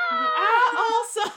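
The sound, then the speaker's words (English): A voice imitates a scream with one sustained, fairly loud "ah" that holds steady and wavers slightly in pitch for over a second before breaking off with a brief breathy burst. “I hear ah, and I go ah. Also, you just scream back at her. Screaming intensifies.”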